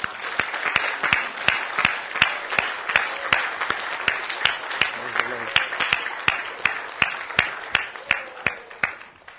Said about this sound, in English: Happy Father's Day to all the fathers. Amen. Let's give the fathers a hand clap.